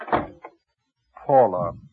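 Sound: door being closed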